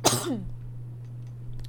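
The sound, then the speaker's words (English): A single short cough bursts out at the start, then trails off into near silence over a steady low electrical hum. “Oh my god, I might cough.”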